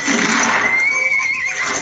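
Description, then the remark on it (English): A horse neighs loudly, one long high-pitched whinny that wavers and trembles before trailing off, with no talking around it. “You need bigger bottles. And a good horse.”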